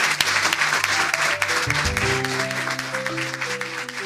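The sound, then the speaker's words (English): An audience at a Lighthouse readings event applauds all the readers steadily, a dense, loud wash of many hands clapping at once, while sustained musical notes play softly underneath. “Let's give another big round of applause for all our readers.”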